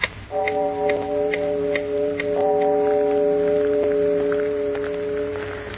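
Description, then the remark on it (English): Deep, resonant clock chimes strike 2 o'clock in the morning in a country house cut off by snowdrifts, each stroke blending into a steady humming tone, with a soft ticking underneath and no voices. “It's 2 o'clock in the morning, Lucy. I heard the chimes.”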